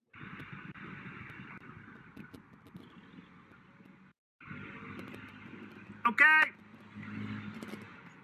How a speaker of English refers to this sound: And I don't know if you can hear the chainsaw that's going here. I'm going to raise it up so you can hear it. Okay. Can you hear the chainsaw? Oh, yeah.